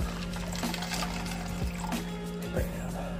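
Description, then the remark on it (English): Water pours steadily into a small mixer holding energy drink powder for a few seconds, a continuous splashing fill with a low hum underneath and no talking. “So all right, we got our packet open. Dump that powder in there.”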